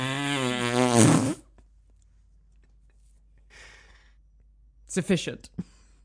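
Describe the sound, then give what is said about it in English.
A voice makes a loud, buzzy imitation of a drawn-out fart lasting over a second, followed by near silence, a faint rustle, and then brief talking. “And it just sounds... a thousand-year fart.”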